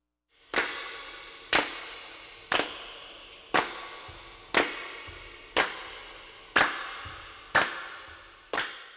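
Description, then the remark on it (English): Nine sharp hand claps, made by people clapping together on a microphone for a record, land at a steady pace of about one per second. Each is sent into the studio's echo chamber and trails off into a long, washy, distant reverb tail, with no voices or other instruments. “And that sound is being sent into the echo chamber of the studio to add the nice distant reverb effect.”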